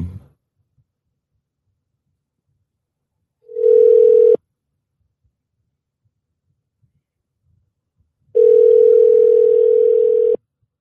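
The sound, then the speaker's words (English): A telephone line tone sounds while a call is being placed to finish an interview by phone: a steady, loud electronic hum in two bursts, a short one, then a longer one after a pause of silence, with no talking. “All right, I'm about to call her. Hold on.”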